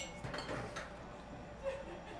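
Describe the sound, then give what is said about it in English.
Whiskey glasses of Burai clink together softly in a brief toast at High West Distillery in Park City, Utah, a light ringing tap or two with faint murmuring in the background. “A toast to you, and thanks very much for being here.”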